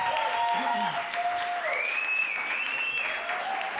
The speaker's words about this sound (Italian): e questo è l'applauso del Monk.